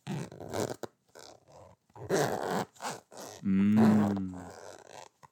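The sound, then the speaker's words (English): A zipper is zipped back and forth for ASMR in several short, rasping bursts with brief pauses between them, and a low, buzzing grunt-like voice sounds partway through. “Is that nice? A little zipper? A little zippy zippy?”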